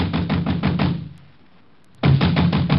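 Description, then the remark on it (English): Loud, rapid banging knocks on a door in the village in a fast drumming rhythm, stopping for about a second of near silence before the pounding resumes just as hard. “I was soon banging on a door there like a drummer playing Bob.”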